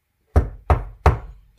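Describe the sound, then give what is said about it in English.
Three firm, evenly spaced knocks on a door, loud, each with a short hollow ring, then the start of another knock at the very end. No voices. “The queen knocked on the door.”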